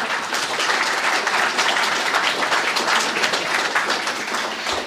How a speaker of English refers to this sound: And another quick round of applause